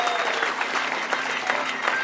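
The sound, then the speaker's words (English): An audience applauds steadily for the evening's audience contestants, a dense wash of many hands clapping at an even, fairly loud level with scattered sharper claps standing out, no voices rising above it. “Let's give them all one more round of applause, please.”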